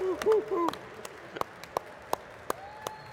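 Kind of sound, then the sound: crowd, audience applause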